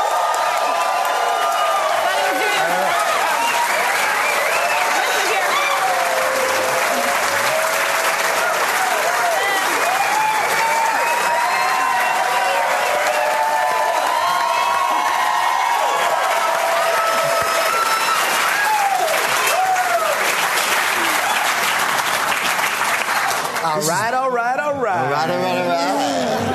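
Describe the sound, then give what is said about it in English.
Sustained applause from a large crowd at Largo on La Cienega in Los Angeles, welcoming performers to the stage, steady and loud for nearly half a minute, mixed with scattered cheers and whoops, before a voice briefly cuts in at the very end. “Please give a big, warm Largo on La Cienega in Los Angeles welcome to”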